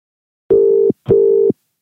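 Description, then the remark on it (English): An outgoing phone call's tone sounds as two loud, steady, mid-pitched beeps, each under half a second, separated by a brief pause. There is no talking over them. “Let's see if Big T's home. Caller number one, can't do it without him.”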